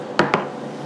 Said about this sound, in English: Cheers, you guys. Cheers. Clink. Oh, cheers.